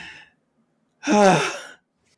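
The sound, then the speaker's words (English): A voice imitates heavy panting as the character Flex, with one loud, breathy, voiced gasp that lasts under a second, clear, after a brief earlier breath, with no words spoken. “So I guess now it'd be when the clones come into the hangar and Flex is behind them panting like crazy.”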